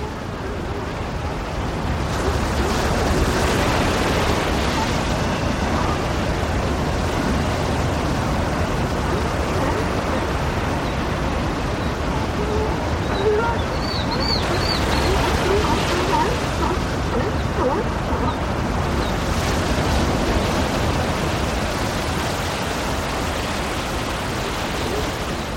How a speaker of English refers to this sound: The mesmerizing sounds of the Pacific at Big Sur. If you listen closely, you'll hear some barking sea lions as well.